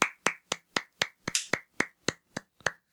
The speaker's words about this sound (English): Looks like that's your round of applause.